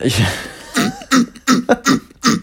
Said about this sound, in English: It's getting pretty wicked. It'll make weird throat itching noises.